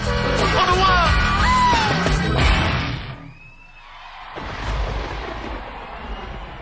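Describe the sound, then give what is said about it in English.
A performer shouts for New York over a loud live band crashing to a final hit at the end of a concert, then the music drops away into a wash of roaring crowd noise and cheering. “He calls for the end on the one and we get thunder and he shouts for New York and a fun.”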